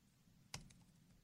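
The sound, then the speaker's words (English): A single crisp computer click as someone clicks through a slideshow, quick, with a fainter follow-up tap just after, set against a quiet, low background hum. “You're clicking through a slideshow, sucker.”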